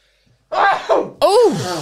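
Someone blows their nose loudly in three bursts: two short, breathy blasts, then a longer honking blow with a wavering pitch that rises and falls. No talking is heard.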